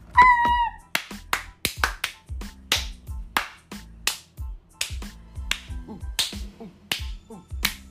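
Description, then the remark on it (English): A short burst of applause-like sounds in a studio in the top floor penthouse of the Empire State Building: sharp, crisp claps or snaps, fairly loud and irregularly spaced, following a brief high, wavering tone at the start. No one speaks. “Everybody give an applause.”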